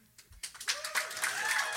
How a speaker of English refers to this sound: So the thing I guess I want to ask first, I want to hear from a round of applause if people really think we could do this.